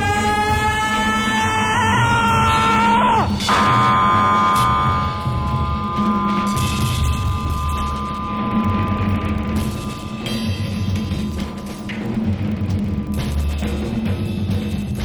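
Loud human screams, aided by a little electrical help, ring out over harsh, droning noise from an early VCS3 analog synthesizer; a high wailing tone slides downward early on, then a dense, rumbling electronic texture churns steadily to the end.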